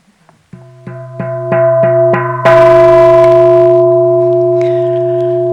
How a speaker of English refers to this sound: I'll ring a few bells for you right now.